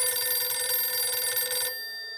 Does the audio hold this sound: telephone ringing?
yes